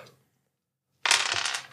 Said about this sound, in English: So go ahead and roll three dice. Okay. 3d6.